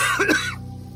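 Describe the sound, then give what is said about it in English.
A single harsh, raspy cough from a man whose lungs are full of smoke bursts out, loud and brief, then fades into near silence with only a faint low hum underneath. “He spent a good minute coughing and trying to catch his breath before he could finish his thought.”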